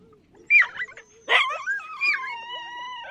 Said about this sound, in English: And keep alive at least the sound, that deep-throated growl, the barking howl of the team.